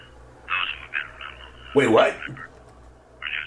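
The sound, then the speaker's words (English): A tinny, garbled voice chatters over a telephone line in rapid, unintelligible bursts, with a louder squeaky stretch in the middle and a faint hum underneath. “You're talking way too fast. Way too fast for Kenny J.J. Allen.”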